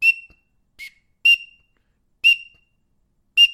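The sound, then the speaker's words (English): Five short, sharp whistle peeps blown on a duck whistle with a little megaphone-like end mimic a male green-winged teal, spaced irregularly with silence between, clear with no talking. “That's what a teal sounds like.”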